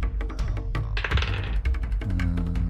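Dice rolled for a dexterity saving throw in a tabletop role-playing game clatter and tumble across a tabletop, a rapid knocking with a quick burst of rattling in the middle and scattered sharp clicks before and after, fairly loud.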